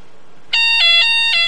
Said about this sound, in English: Let me call you back, because I'm getting some noise on the line. Is the fire alarm's going off?